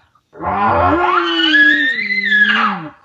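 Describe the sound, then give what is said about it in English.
A single loud, drawn-out growl call imitating a bull elk, used as a challenge toward a screaming bull, starting low and raspy before rising into a strained, steady harmonic tone that holds for nearly three seconds, with no talking. “I'm sticking more with the growl, more of that.”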